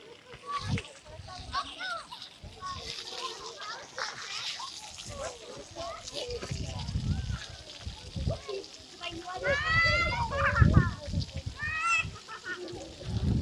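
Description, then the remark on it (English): Children splashing and playing in water, with repeated watery splashes and bursts of high, excited squeals and voices rising over a busy outdoor background. “Kids in water, trust me, they just love it.”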